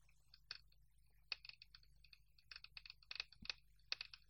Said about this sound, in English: Okay, that's the dice.